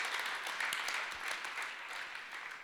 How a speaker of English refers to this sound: In February of 2023, we are going to start a Conquer series for all the men in the church. Yeah. That's something you can clap for.